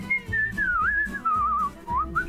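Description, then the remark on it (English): A man whistles a wavering, melodic tune on a morning radio show, leading into its Riddle Time segment, the pitch sliding and bending through several short phrases over a low, steady background bed. “Thanks for the old man whistle this morning.”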